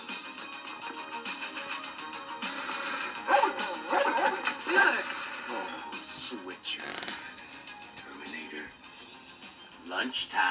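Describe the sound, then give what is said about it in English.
A dog named Terminator lets out a run of yelping barks and high whines, fairly loud, with a few sharper bursts in the middle and voices murmuring underneath. “So you went from one dog named Rambo to a dog named Terminator.”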